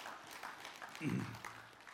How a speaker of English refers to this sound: That was pathetic. I want more applause.